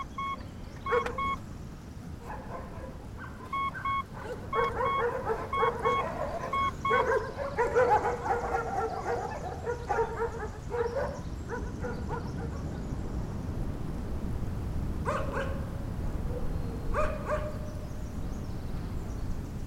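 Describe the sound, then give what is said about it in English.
Several dogs bark and yelp repeatedly in a village over a steady outdoor ambience, with a few higher whimpering yips and faint tonal beeps mixed in; no one speaks. “You mentioned it with like the dogs barking and everything, but the sound of those dogs and the environment, that's what plays over the entire credits.”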